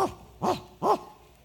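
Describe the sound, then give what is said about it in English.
A human voice imitates a dog barking: three short, evenly spaced barks, fairly loud, with no other sounds around them. “Turn it to the dog.”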